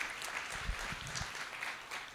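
A church audience applauds steadily during a morning service, thanking helpers with the Jesse tree, a dense wash of many hands clapping at an even level, with a few louder individual claps standing out from the mix.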